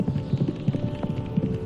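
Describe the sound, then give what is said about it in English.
Horse hooves gallop in a quick, uneven rhythm of dull, low thuds, running steadily over a constant background hum with no voices. “And then the sound of galloping stops.”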